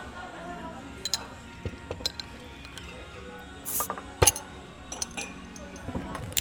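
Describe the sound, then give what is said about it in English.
Soju and beer bottles being opened: scattered clicks and ratcheting cap twists, a short hiss of release, and a few sharp glass clinks over a low, busy background. “Well, shall we crack some open?”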